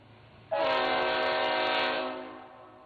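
A loud, sustained train horn blasts suddenly with a rich, chord-like tone, holding steady for well over a second before fading slightly at the end. No voices accompany it.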